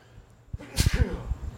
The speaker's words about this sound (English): Bless you. Gesundheit.